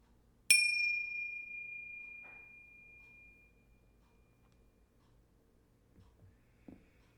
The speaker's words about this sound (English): I'm going to begin today's short meditation with a single bell, and I'll be ending it with a double bell.